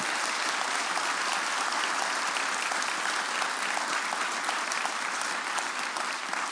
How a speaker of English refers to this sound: So thank you, and can we give them a round of applause as well?